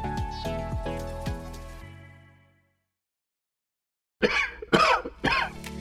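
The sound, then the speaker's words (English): A short musical phrase rings out and fades to silence, then a person coughs three times in quick succession, harsh. “Cold and cough season is here.”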